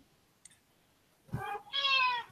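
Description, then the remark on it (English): A cat meows twice, a short chirpy call followed by a longer, louder drawn-out meow with strong harmonics, after a faint click and near silence. “Kitty, it's too far away. Too far away.”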